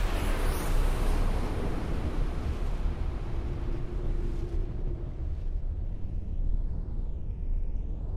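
A loud, continuous low rumbling roar like sustained explosions as a bright green laser beam rips a bird cannon in half, with a brief whining tone in the middle and a faint wavering high zap near the end; no voices.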